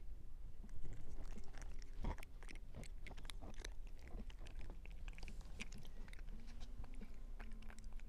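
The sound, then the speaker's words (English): A cat chews and crunches on food, a run of irregular sharp bites and crunches over a low steady background, with no talking. “She didn't really get a crunch on that one.”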